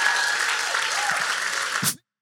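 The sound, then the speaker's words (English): A church audience applauds steadily, a dense wash of many hands clapping at a constant loudness for about two seconds before cutting off abruptly. “Come on, church, would you clap today?”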